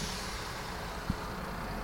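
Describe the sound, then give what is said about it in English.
Steady road traffic rumbles as vehicles roll past, including a grey Mercedes followed by a Volkswagen T-Roc, with a broad engine and tyre hiss and one brief low thud partway through; no voices. “It's a grey Mercedes. Volkswagen behind it. Volkswagen T-Roc.”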